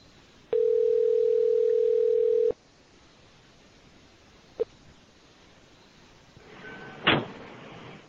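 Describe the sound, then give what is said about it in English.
A steady, loud telephone tone sounds for about two seconds as a call is placed to someone joining by phone, then cuts off, followed by a brief click and a short burst of noisy line static near the end. No one speaks. “he is going to be joining us on the phone as well. So, hold on while I get a hold of him.”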